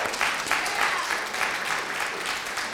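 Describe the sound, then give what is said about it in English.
A church crowd applauds steadily, a dense wash of many hands clapping at an even, moderate loudness with no voices rising above it, sustained for the whole few seconds. “You won't be clapping in a second, I guess, because what I was going to say is I'm going to hold you all accountable to the words you just sang.”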